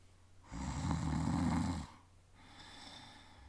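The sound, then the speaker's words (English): A guard's single loud, rumbling snore lasting over a second, followed by a softer, airy breath out, with no one talking. “Him snoring.”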